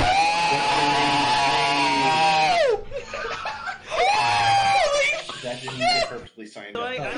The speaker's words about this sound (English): It's going to be me screeching, and you are more than welcome to. Yeah. Go ahead. Do it. It's just an absolute screech, and I can explain what happened.